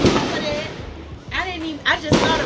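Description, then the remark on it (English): A few sharp pops of fireworks burst out at irregular intervals, with voices murmuring faintly in between. “So let some of these pop. Y'all hear all that? Fireworks.”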